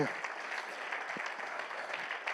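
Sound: audience hand clapping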